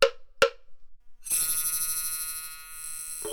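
A barber's huantou, the old Beijing metal street-call instrument that told people the barber had come: two sharp metallic clicks, then a bright, shimmering ring that hums and sustains for about two seconds before another tap. No voices.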